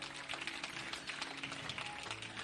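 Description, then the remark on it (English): A crowd applauds steadily, a dense wash of many hands clapping at once with no pauses, fairly soft overall and with no voices standing out. It is a hand clap of praise for the Lord in the morning. “Come on, give him a mighty hand clap of praise this morning.”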